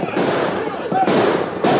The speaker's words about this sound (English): They raced to the rear of the herd of cattle which the camp tended for beef and fired their guns to stampede the steers.